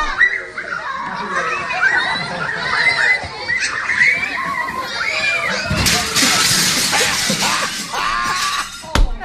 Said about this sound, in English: Oh, no. You hear the kids? It's like, oh, no. Oh, no. It's completely unprompted. Like, nothing happens to make him make a mad dash away from the party. He just goes flying and then crashes through the window.